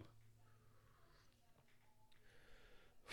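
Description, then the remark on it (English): Heavy, labored breathing: a series of ragged, noisy breaths and sniffs over about three seconds, someone struggling to catch their breath. “Again, breathing issues.”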